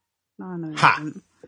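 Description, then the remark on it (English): A dog in another room whines in one drawn-out, wavering cry lasting about a second, with a sharper yelp-like break in the middle and a short trailing sound after, fairly loud and heard on its own. “It's because that dog won't shut up in the other room. Is that your dog? Your dog's whining, not my dog.”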